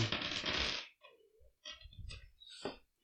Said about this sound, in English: I don't like when he picks up that many dice. What? They're just dice.